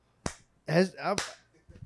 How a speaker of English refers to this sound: Also, now that I just thought of this because I have small hands, and I was clapping, Trump's hands.